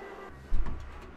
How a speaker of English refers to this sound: this goddamn vacuum is right outside my door, I think. Oh, I hear it.